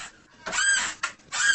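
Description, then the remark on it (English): A chair creaks and squeaks in three quick strained bursts, fairly loud, with no voices over it. “Oh, the chair.”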